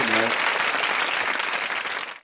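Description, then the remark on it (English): A burst of canned applause, dense clapping filling the whole stretch at steady loudness before cutting off abruptly, with a brief voice-like tone at the very start. “Where's the applause?”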